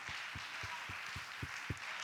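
A church audience at Harvey applauds together, a steady wash of many hands clapping to thank the Lord, with faint low thumps repeating in a regular beat underneath.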